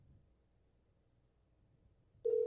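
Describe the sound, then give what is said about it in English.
A phone line's ringing tone for a phone call interview cuts in abruptly near the end, loud and steady, after a couple of seconds of faint low background hum. No one speaks. “Well, it's ringing.”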